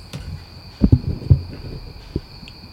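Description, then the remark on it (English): A smush-nosed dog's loud breathing: a few low, muffled puffs and snuffles at an uneven pace, with a faint steady high-pitched whine running underneath and no one talking. “I can hear him breathing. He's a very loud breather.”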